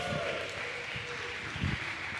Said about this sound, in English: George, give George a round of applause.